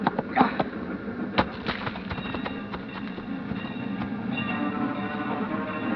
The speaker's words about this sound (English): The train rolls by slowly, and the crossing bell warns that death is here.